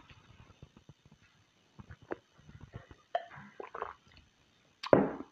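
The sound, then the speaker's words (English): Quiet sipping and swallowing of water: a scatter of small wet clicks and gulps, ending with a louder slurp and a soft exhale, with no talking. “And while you're thinking, I'm going to have some little bit of water, and then we're going to continue.”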